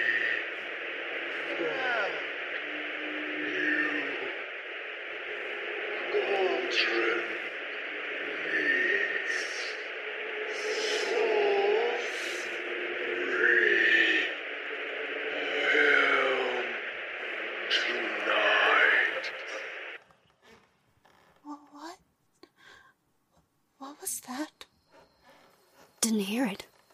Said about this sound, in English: Too much static. Get the ham radio set